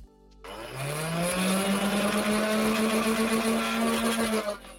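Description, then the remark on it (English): A motorized Nerf blaster is revved at full blast, its flywheel motor whining upward in pitch and holding a steady, loud buzzing hum for about four seconds before cutting off. “But if we had Spotify listeners, I would say that you know this is a Nerf gun that this guy's revving right now.”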